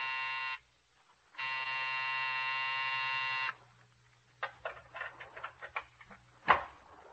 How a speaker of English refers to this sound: But Dr. Robbie McClure's office building was different. It sat square and solid on its haunches, and when you pressed the night buzzer, it growled at you.